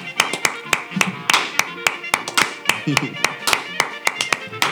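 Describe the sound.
A group of people clapping their hands in steady, overlapping bursts of sharp claps, with faint voices murmuring underneath.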